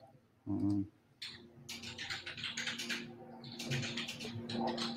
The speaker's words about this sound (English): Is that your wife in the background? I can hear her typing. Yeah, that's my wife typing.